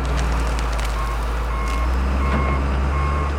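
A tractor's heavy, steady diesel rumble drones throughout, joined by repeated high-pitched warning beeps and occasional crackling bursts as it pulls tart cherry trees from an orchard in Suttons Bay, Michigan. No one speaks.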